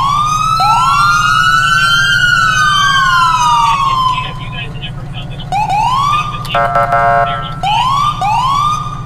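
A loud, updated police siren from a video game wails up and down, briefly switches to a quicker warbling pattern, then resumes sweeping over a steady low engine hum.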